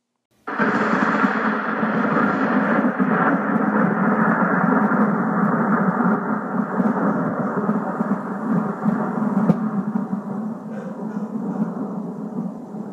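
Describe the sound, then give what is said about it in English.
A heavy, continuous rumble from a big storm with purple lightning and cold wind rolls on steadily for the whole stretch after a sudden start, loud, with deep thunder-like roaring that never fully fades and no voices. “There was a big storm with purple lightnings outside.”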